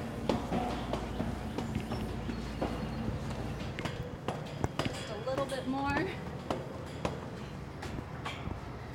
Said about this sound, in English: led me up a flight of stairs. In we go.